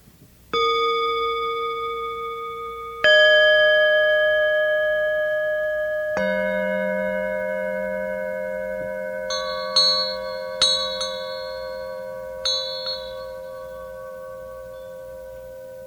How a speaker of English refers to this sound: And as you listen, let yourself also listen to the sound of these bells.